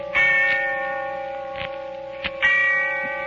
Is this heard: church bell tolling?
yes